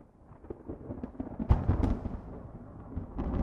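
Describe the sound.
Simulated thunder rumbles low and steadily, swelling into a louder crackling burst midway before rolling on at moderate volume. No voices are heard.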